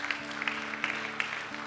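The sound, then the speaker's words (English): An audience claps together in a dense, steady burst of applause as a hand clap of praise to God, with sustained musical tones holding underneath throughout. “Can you give God a hand clap of praise for that?”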